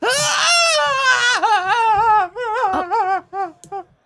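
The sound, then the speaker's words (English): A voice imitates the unhappy shriek of a bird called Miss Ma'am Meow Meow, a few feet away: a loud, drawn-out wailing cry, then a run of shorter wavering squawks that grow choppier and trail off. “But Miss Ma'am Meow Meow should be ready in just a moment, and you hear a shriek from a few feet away.”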